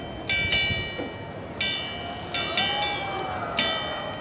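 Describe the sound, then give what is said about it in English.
An old-fashioned school bell is rung to signal the start of a show, ringing out in a handful of bright, irregular clangs, loud, over a steady murmur of outdoor background noise. “The show begins when Kitty Jo rings this old-timey school bell.”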